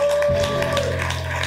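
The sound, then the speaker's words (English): An audience claps their hands in a dense, uneven patter of many overlapping claps, carried over a steady low sustained tone, with no voices standing out. “Clap your hands and shout glory.”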